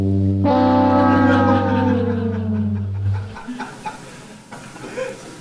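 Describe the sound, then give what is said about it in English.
A comedic fail whistle sound effect played from a button: a loud, buzzy whistle sounds for about three seconds, its pitch sliding slowly downward, then cuts off into faint murmuring voices and rustling. “I get the fail whistle all the time.”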